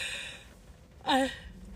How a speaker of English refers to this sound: I don't know how you're yawning.